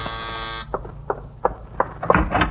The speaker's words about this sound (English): I was just about to join Mrs. Davis in the yard when the doorbell rang.